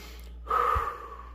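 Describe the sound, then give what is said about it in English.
A single deep, airy breath drawn in and out, rising quickly and then slowly fading, with no talking. “So you write your trigger and your trigger score, and then you need to start deep breathing in and out.”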